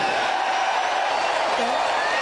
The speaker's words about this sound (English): Let me just hear by your cheers what you like. So, make America great again.